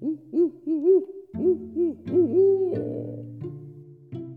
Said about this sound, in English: Barred owls are territorial and often quite vocal most any time of the year. You'll hear them doing their call, "Who cooks for you? Who cooks for you all?"